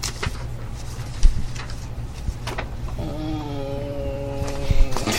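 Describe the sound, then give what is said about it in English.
A person imitates an upset cat: a strained, wavering yowl with a harmonic, slightly wobbling pitch lasting about two seconds, preceded by a low steady hum and a few faint clicks. “I make an upset cat noise.”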